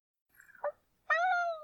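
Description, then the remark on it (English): A small black kitten, curled up between two intersecting logs in a woodpile, cries out twice: a brief, thin mew followed by a longer, louder, high-pitched meow that trails off. No one speaks. “In between two intersecting logs was a little black kitten, curled up and crying.”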